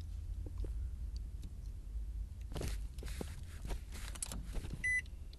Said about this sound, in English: I am melting in this car. But it's fine. It's just, I'm losing weight. Let's turn on the car again, because I'm dying.